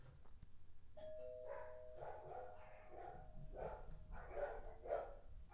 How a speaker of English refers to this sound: All right. Well, there's my doorbell. So let's do this.